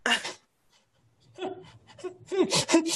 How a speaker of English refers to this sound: And you hear him kind of whimpering as he runs out of the room.